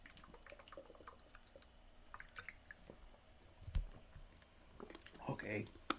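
Someone drinks water: quiet wet clicks and small liquid sounds, a soft thud midway, then a louder gulping swallow near the end, with no talking.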